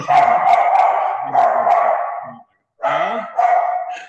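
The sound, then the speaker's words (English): A dog barks excitedly in a loud, rapid series of harmonic yaps and howl-like cries, with a brief pause before another burst of barking. No one speaks. “My dog's about to go nuts.”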